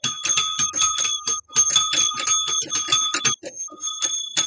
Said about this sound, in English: And so it's time to ring bells.